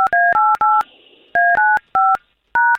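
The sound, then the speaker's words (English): Seven crisp touch-tone beeps from a telephone keypad as a woman's phone number is dialed, in quick groups of three, three, and then one, each tone clear and steady with short pauses between groups. “Thank you for giving us her phone number, and let's see if we can't get to the bottom of it.”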